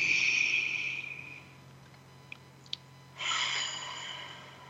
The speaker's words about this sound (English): And let's take a deep breath in through your nose. See how big you can make your belly. A little bit more. And then out through your mouth. Like through a straw. Take another deep, beautiful breath.